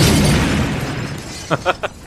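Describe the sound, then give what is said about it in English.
A loud, booming explosion of a crash into a mountain opens with a heavy rumble that gradually fades, followed by three quick, short bursts near the end. “Crashing into the mountain that's always been visible from the Simpsons house.”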